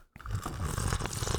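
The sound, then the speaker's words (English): A loud slurp of tea, a harsh, airy sucking noise that kicks in after a brief pause and keeps going steadily to the end, with no talking. “What if I really slurp it like this?”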